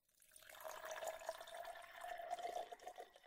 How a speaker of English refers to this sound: But I'm gonna go ahead and pour a little bit of this.